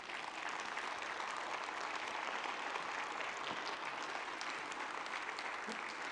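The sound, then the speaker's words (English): An audience stands and claps hands in steady, dense applause for about six seconds to honor the ladies of the Victory community, a broad crackling wash of many overlapping claps at an even loudness throughout. “Would you stand to your feet and one more hand clap?”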